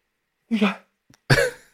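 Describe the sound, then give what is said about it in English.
A small, stifled sneeze: a short voiced huff, a faint click, then a second brief breathy burst, moderately loud and over in under two seconds, with no talking. “But I have a sneeze coming.”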